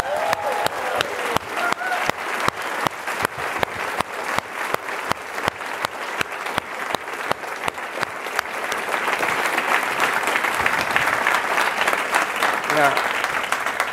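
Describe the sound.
A conference audience at EAG breaks into applause for the organizers, starting with many sharp, rhythmic claps that swell into a dense, sustained roar of clapping lasting several seconds, with a few voices mixed in early on.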